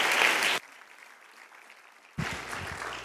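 A loud burst of audience applause at Calvary Church that cuts off abruptly after half a second, leaving a low, steady hiss before a voice begins speaking.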